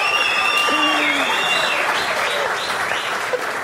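Steady audience applause fills the space, a dense wash of clapping hands with a few faint whoops and voices mixed in, holding at an even loudness throughout.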